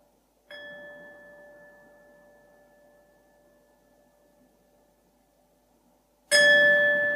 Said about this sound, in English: Now we are coming closer to the end of this meditation session. I will ring the gong 3 times. Then you can come out of the meditation.